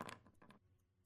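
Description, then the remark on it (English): Dice clatter across a tabletop: a quick burst of sharp plastic clicks and bounces, then a couple of fainter ticks as they settle. No one speaks. “Don't worry about all those dice rolls.”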